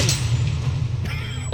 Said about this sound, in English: Oh my god! That's a loud drunk tank door. He's in the drunk tank. That's like the War Games door.